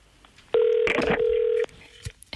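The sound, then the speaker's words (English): A single steady telephone ringback tone sounds for about a second, loud and electronic, heard over the line. Quiet background hiss follows, with no talking. “It's ringing.”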